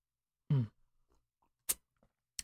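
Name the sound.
sipping a drink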